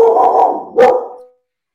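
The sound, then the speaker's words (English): A border collie barks loudly, a sustained vocal bark followed by a sharper second bark around the middle, then silence. “He's a border collie, and he just came from playing outside with my husband and kid”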